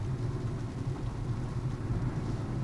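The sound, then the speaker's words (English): A steady rumble inside a moving car driving back from Columbus in the rain, with a constant wash of hiss from rain and wet road noise over it, continuing evenly without any voices. “This will sound really great, too, with the rain”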